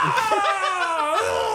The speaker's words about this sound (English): Stick your head in a box. Stick your head in a box and you scream.